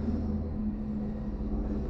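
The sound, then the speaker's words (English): Trains pass by in the background, a continuous low, heavy rumbling drone with a constant hum running underneath. It holds an even loudness throughout, with no voices. “Sorry for the trains in the background.”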